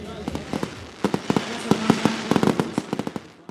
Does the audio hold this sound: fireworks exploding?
yes